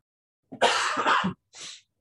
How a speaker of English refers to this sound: If I cough at any point, I apologize for you guys listening. I'm going to try to lean away as far as possible. I have one coming now.